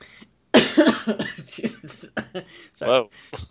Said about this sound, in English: Sorry, this is like the worst possible time to cough.